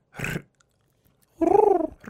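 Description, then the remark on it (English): A person imitates a bird's cooing: a short breathy puff, then a throaty, fluttering coo lasting about half a second that rises slightly and falls, pulsing rapidly throughout. “I mean, you could take a cooing class too.”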